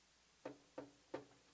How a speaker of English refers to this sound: Knocking on the door. As another servant comes to the door.